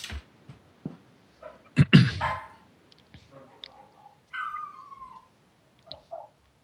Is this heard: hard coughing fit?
no